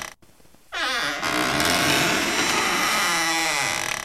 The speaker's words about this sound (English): I heard that there was a door, right? That was supposed to be a door opening. It was some sort of squeaky sound.